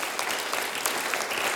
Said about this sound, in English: Come on, let's give God a round of applause for that one.